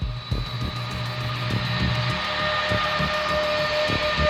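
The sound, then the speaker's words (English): Airplane engines starting up, beginning with engine number one, with everyone loaded aboard: a steady mechanical roar with a thin high whine and a lower hum, underpinned by a rumbling drone with soft rhythmic thumps, growing slightly louder. No voices. “Engines clear to start. Setting number one.”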